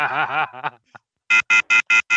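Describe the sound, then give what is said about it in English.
A brief voice, then a loud off-hook telephone warning tone from a phone left off the hook: five harsh, evenly spaced electronic beeps pulsing at a steady rapid rhythm, piercing. “You forgot to hang up the phone.”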